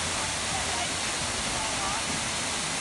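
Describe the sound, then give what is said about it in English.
A waterfall roars steadily, a dense, constant wash of rushing water that fills the whole clip at an even, loud level with no pauses. “At some point, yeah, I mean, you know, it's very dangerous to swim under waterfalls, but I don't know.”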